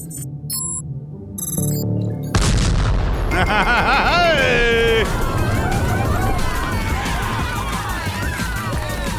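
Short electronic beeping tones give way to a sudden loud torpedo-hit explosion, from a torpedo the computer fires at coordinates Echo 1 in a guessing game, a booming burst followed by sustained rumbling noise and a few falling, whistling pitches that slowly fade.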